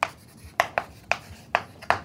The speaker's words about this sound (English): When you listen to the chalk on the blackboard, it tells you a lot about the person who's talking and communicating with you. How confident is somebody in what they're saying? How much do they really understand? How hard is somebody hitting the board